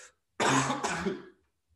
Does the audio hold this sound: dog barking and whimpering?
no